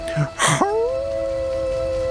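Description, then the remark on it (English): In a tabletop role-playing game, a person voices the howl of pain of a mayor struck between the shoulder blades by a kusarigama: two short, harsh gasping bursts, then a long, steady, piercing howl held for more than a second, fairly loud. “As S comes down, striking with his Kusarigama, you see it plunge in between the shoulder blades of the mayor, who doubles over in pain and lets out a terrifying howl.”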